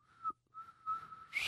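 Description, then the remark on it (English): A person whistles a short, wavering tune in a few steady tonal bursts with a brief gap, ending in a breathy hiss; moderately loud, with no talking. “Can you whistle? Not well.”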